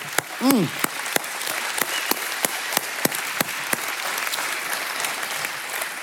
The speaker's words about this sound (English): So all at once, let's just give him a rousing clap and celebration for who he is. Woo!